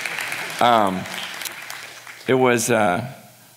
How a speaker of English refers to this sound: And I just, yeah, you can clap, I don't know.